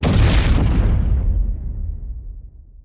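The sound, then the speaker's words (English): A package bomb, a 9-inch pipe packed with explosive powder inside a box, goes off when the box's little door is opened: a single loud explosion bursts out with a deep, heavy boom, then rumbles and fades away over a couple of seconds. No one speaks. “Marker then decided to open the little door on his own, and it detonated with a deafening boom.”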